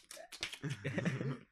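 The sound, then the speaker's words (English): A voice rapidly mimics typing on a MacBook keyboard with a quick burst of clicky mouth sounds, followed by a short voiced, tongue-clicking patter, fairly loud. “That was an impersonation of like keyboard click.”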